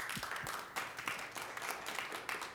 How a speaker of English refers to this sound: Don't give up. You can clap again.